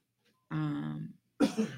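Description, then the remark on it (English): A person clears their throat with a low, rough rasp, then after a short pause gives one sharp, breathy cough, moderately loud, with no one talking. “need a cough button.”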